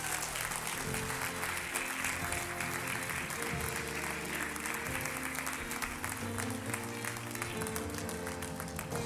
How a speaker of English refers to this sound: Can we give the Lord a hand clap of praise today? Amen.